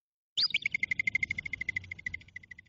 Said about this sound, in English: So to end the episode, I think I'll play you some lovely groundhog / woodchuck / whistle pig sounds, so you will see why they are also called whistle pigs.